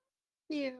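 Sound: cat meowing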